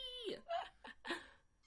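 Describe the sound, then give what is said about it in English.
A cat named Stevie meows in a quick series of short, tonal calls, about four close together, each bending in pitch, fairly clear. “That's probably why Stevie's meowing so much.”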